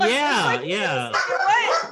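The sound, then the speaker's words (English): A dog barks in a loud, drawn-out run of yowling, wavering vocalizations that rise and fall in pitch for about two seconds, with no clear pauses between them. “There's a dog back.”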